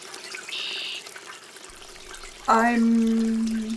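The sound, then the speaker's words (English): Steady rushing of flowing river water, recorded for a river sound map, with a brief high whistle early on and a sustained low droning tone rising over the current near the end. “Soak in the sounds of a river with this composer’s sound maps”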